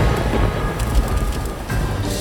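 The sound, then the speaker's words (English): Steady rain pours down in a dense, continuous hiss, a broad wash of noise that fills the whole short stretch at a fairly loud, even level with no voices. “Jeez, I did not come here prepared for rain.”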